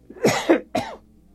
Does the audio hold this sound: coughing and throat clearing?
yes